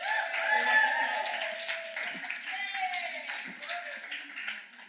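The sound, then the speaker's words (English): Steady audience applause fills the whole stretch, a dense wash of clapping mixed with cheering and crowd voices, fairly loud throughout and tapering slightly at the end. The applause comes as friends and family are invited onto the stage. “Applause. Come to the stage.”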